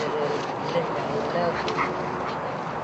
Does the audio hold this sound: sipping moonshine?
no